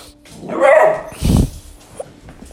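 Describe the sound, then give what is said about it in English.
A dog gives a couple of loud barks, the first a higher whining yelp and the second a deeper, punchier woof, with quiet background noise around them. “Go bark at people walking by.”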